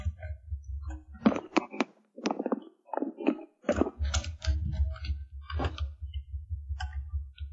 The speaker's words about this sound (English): Somebody is typing furiously.